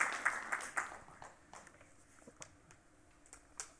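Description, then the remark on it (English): A brief, quiet patter of audience applause after a poem reading that starts as a small burst of clapping and thins out into a few scattered claps before fading away. “And you don't have to clap.”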